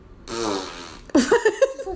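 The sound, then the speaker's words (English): A drawn-out, buzzy fart noise rumbles for about a second, then gives way to a louder, wobbling sputter with rising and falling pitch, with no talking, given as the answer when asked to pick between NC State and Western Carolina in a game-picking segment. “That's probably accurate, the fart noise.”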